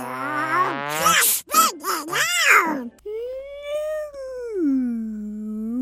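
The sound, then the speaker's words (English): A person mimics whale song with drawn-out, wavering vocal moans that slide up and down in pitch, loud, with no other talking. “Are you speaking whale on the show?”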